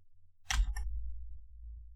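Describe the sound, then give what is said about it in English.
Two quick, crisp computer keyboard key presses, one right after the other, as the Windows key and period are pressed to open the emoji keyboard, followed by a low steady background hum with no talking. “You press, I believe it's Windows and period to open the emoji keyboard.”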